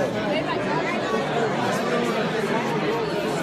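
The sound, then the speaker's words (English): Dense crowd chatter fills the space, a steady babble of many overlapping voices, with no single voice standing out. “There is a lot of crowd. We're in the crowd.”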